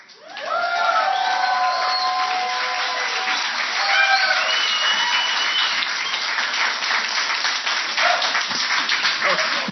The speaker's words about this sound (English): All right, let's give him a round of applause for 15 years.